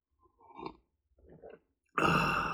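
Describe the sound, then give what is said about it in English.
Two soft slurping sips of hot coffee, each under a second, followed by a sudden loud, breathy, sustained sound that runs to the end with no talking. “Coffee sip break.”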